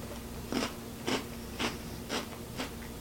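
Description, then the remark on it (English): Five crisp crunching bites land at a steady rhythm, roughly half a second apart, fairly quiet, as someone chews a mini Oreo chocolate sandwich cookie. A faint steady hum sits underneath. “Unfortunately, I don't have milk, but let's test out one of these little minis. Here we go, 3, 2, 1.”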